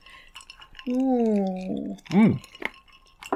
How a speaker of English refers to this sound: Cheers. Cheers to everyone. Cheers to you. Clink. Clinkety clink.